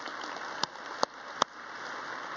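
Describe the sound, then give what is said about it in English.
Three sharp, separate hand claps spaced about 0.4 seconds apart, a brief scattering of clapping from a church audience at news of 54 baptisms, over a steady background hiss with no talking. “Yeah, you can clap at that.”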